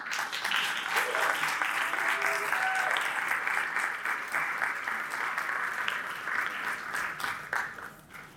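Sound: audience applause welcoming panelists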